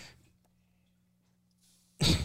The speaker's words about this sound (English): I sneeze, sneeze, sneeze, sneeze, sneeze.